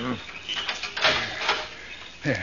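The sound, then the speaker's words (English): A padlock being unlocked on a vault door in a cemetery at midnight: a few sharp metallic clicks and scrapes, the strongest two about half a second apart, with a man's voice murmuring at the start and end. “I'll have the padlock off in a minute.”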